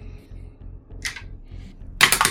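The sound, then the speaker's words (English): Dice are rolled for initiative in a tabletop role-playing game and clatter onto a tabletop: a brief rattle, a pause, then a louder burst of rapid clicking as they tumble, over a faint low hum. “So I believe that means we are rolling for initiative.”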